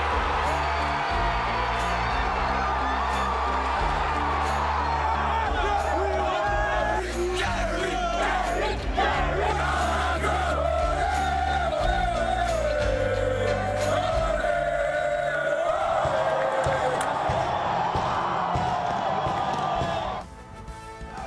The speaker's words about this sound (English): It's been a long time since we've heard the roar of a live crowd. And we're excited to have you here with us tonight. What a great sound to hear, isn't it? The sound of fans, and they've been on their feet.